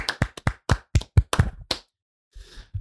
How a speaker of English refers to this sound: And as we do at the end of every bracket, we are going to clap it out.